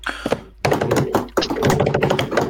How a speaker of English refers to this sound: And the third one, drumroll.